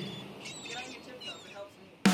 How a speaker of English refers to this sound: I'm the last lighthouse keeper on the coast. Seagulls for company.